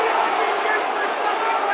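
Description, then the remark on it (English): The Millwall football crowd shouting and calling out together after the referee gives a free kick but no yellow card, a loud, steady, dense roar of many voices that holds level for the whole couple of seconds without a break. “And the Millwall crowd calling for something, as you can hear.”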